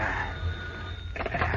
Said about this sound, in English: Throughout the evening, it rings at intervals, and finally, when the hands of the mantel clock in the dark room point to 5 minutes before midnight, the shrilling clamor of the phone is stilled as a hand reaches out and picks up the instrument.